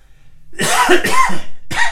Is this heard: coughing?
yes